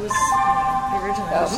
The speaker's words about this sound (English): Brief blip. It was your phone, probably.